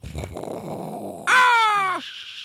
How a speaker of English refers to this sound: Those were birds that were flying by. They're all seagulls because it's a yacht. So that was a very seagully noise right there.